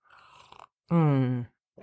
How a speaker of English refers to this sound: Sorry for my sips of coffee, but as you can hear, my voice is a little scratchy. So I'm gonna have to take some drinks of my coffee here and water.